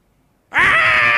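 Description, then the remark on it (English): After a brief silence, a speaker in a church abruptly lets out a loud, sustained, high-pitched wail, mimicking a screaming baby. The shriek holds steady until the end. “Screaming and yelling.”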